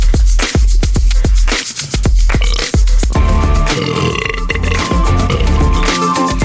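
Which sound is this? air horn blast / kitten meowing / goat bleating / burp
burp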